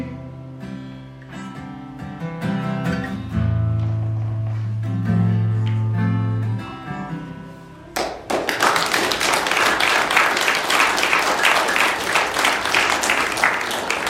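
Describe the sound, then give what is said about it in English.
A song with a steady bass note winds to its final chord, then an audience bursts into loud, sustained applause, a dense wash of clapping filling the last six seconds. “They never clap when I'm finished.”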